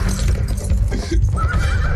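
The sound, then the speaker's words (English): A horse whinnies with a high, wavering call over the steady clatter of trotting hooves as a man rides it off, with no talking. “Yeah, and then he feeling good, he gets on his horse and he's like, well, I got the okay to just ride off and fuck up somebody else's life.”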